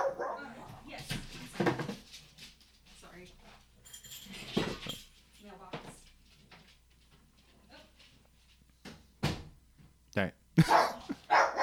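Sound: dog barking and whimpering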